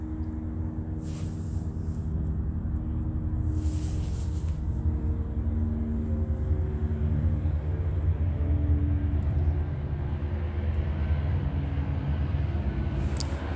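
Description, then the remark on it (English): A steady, droning rumble of a state helicopter circling overhead at about 9:49 p.m. hangs in the air, loud and continuous with a slightly wavering low pitch. No one speaks. “p.m., state is circling a helicopter.”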